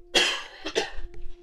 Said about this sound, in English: So, I apologize. I'm sure you can still hear me coughing when I mute my mic.